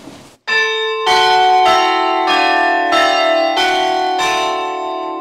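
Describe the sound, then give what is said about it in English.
Church tower bells ring out loud, struck one after another in a steady sequence starting on the highest bell and stepping down the scale, each ringing tone sustaining and overlapping the next, played just before four o'clock. “We're going, I'll demonstrate it right now just before it's four. So we'll start on the highest bell and we'll go.”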